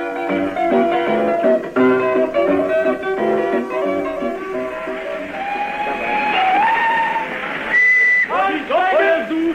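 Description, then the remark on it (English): A steam train whistle gives a short, shrill blast near the end, rising out of a busy, murmuring background of voices and station noise. “I thought the train had left you behind.”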